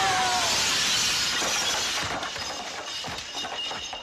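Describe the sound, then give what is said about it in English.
A loud, bright crash of glass shattering as somebody jumps out of a second-floor window, followed by a dense spill of tinkling shards that rattle and scatter for several seconds before tapering off. No voices. “Yes, somebody jumping out of a second floor window. Couldn't find a good bell fully.”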